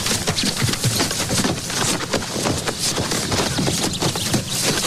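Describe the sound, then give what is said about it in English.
Horse hooves clip-clop in a quick, steady rhythm throughout, fairly loud, over a dense, noisy background with no one speaking. “Oh, I gotta get the horse, man.”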